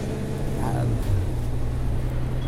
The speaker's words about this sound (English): I'm on a bus, what do you expect? So we've just turned on to Klassen Boulevard at 10th Street.